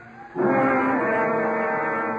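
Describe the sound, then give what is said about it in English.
An ambulance siren, arriving at night at a car crash by a river, starts abruptly and holds a loud, steady, harmonic wail with little change in pitch, sounding alone for about two seconds. “Oh, comes the ambulance”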